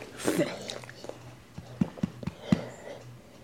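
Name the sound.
dog making noise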